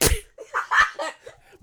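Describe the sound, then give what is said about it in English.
A loud, wet slapping fart bursts out, followed by a few shorter sputtering puffs trailing off over about a second and a half. “It sounds like somebody slapping a wall or a countertop with steak.”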